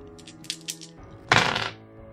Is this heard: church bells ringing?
no